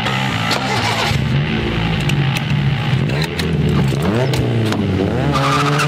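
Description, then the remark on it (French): A car engine revs hard and the vehicle pulls away with loud, sustained tire screeching, the squeal rising and wavering over several seconds. “on compte sur toi pour ne pas oublier le frein à main et démarrer en puissance.”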